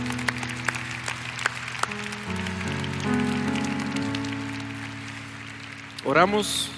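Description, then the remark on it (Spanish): Audience applause at a church service for the children's volunteers, a steady crackle of many hands clapping throughout, mixed under sustained musical tones that shift in pitch, with a brief rising vocal sound near the end. “Un aplauso para los voluntarios de los niños.”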